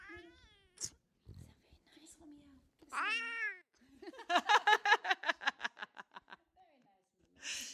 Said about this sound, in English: We've got such a meowy cat. I feel like we should try and get the kitty on the mic if we can.